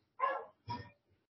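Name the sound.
dog barking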